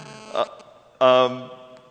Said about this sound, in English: Something's humming. I don't know if that's me.